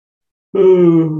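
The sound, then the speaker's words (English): After a brief silence, a loud voiced groan rises like the start of a big yawn with a stretch, held steady and slightly sinking in pitch, cut off while still sounding. “Oh, we can do just aligning with that, like giving yourself a generous yawn and stretch.”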